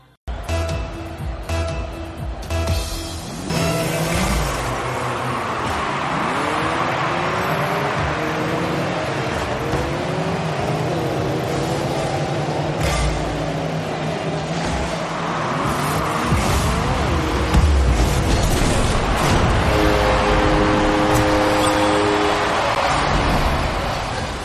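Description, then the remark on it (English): Several car engines in the video game Rocket League rev and whine continuously, pitches sweeping up and down in overlapping arcs, with crowd-like noise and game sound effects layered throughout and no talking. “If you can hear the engines revving through all the screaming, what game is this?”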